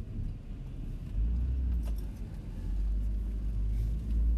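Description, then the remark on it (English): A car engine rumbles in a low, steady drone, swelling slightly as the car pulls out of a parking spot in a car park to make way for a truck wanting the spot, with faint clinks and no talking. “Sorry, there's a truck wanting to get in my spot. I'll get out of the way as an act of niceness.”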